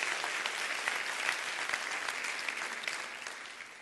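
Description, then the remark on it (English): A church audience claps their hands during a service in a steady, dense wash of applause that holds for several seconds, then tapers slightly toward the end. “Clap your hands.”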